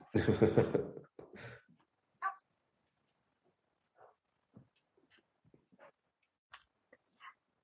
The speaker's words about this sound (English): One moment. Pause. 2 seconds. I'm just going to put this dog out of the room. Sorry.